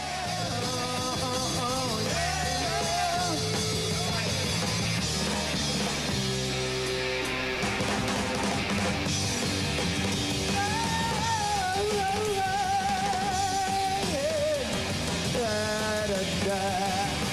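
A loud, full rock band plays live, with a guitar line that sweeps and bends in a vocal, wah-wah way over steady drums and bass, sustained throughout with no talking.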